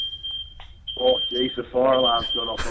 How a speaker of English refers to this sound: Oh, geez, the fire alarm's gone off. Oh, no.